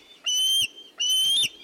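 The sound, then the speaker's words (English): A juvenile bald eagle, not long out of the nest, gives two high, thin whistling calls in quick succession, each a drawn-out squealing note ending with a slight waver, clear with no other sounds. “National symbol though it may be, this juvenile bald eagle, not long out of the nest, is anything but graceful at the moment.”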